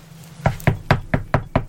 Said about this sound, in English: And I knock hard on the door.